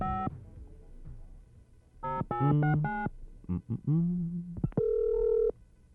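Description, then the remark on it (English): A telephone dial tone and a quick string of loud, clear keypad tones as a number is dialed for a 1984 prank wake-up call on radio station 96 Rock, ending with a steady held tone. Nobody speaks. “6:04, good morning, got a wake-up call to do this morning. Get to the phone, yeah?”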